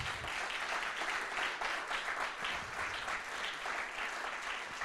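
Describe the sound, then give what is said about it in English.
A standing church audience claps for Jesus, the Prince of Peace, in sustained, dense applause that stays steady and fairly loud for the whole stretch, with no voices standing out above it. “Clap for him if you want to clap.”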